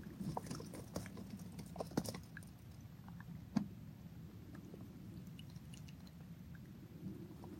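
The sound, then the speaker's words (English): A steady low rumble of moving water runs throughout, broken by scattered cracks, pops and clicks of ice. No one speaks. “Breathing in the sounds now of the ice and moving waters, the rumbles.”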